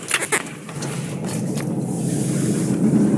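Steady road rumble and hiss from inside a car being driven on the way to work, with a few soft clicks and thumps near the start, the engine and tire drone growing slightly louder toward the end.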